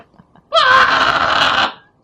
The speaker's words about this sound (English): He screams into it.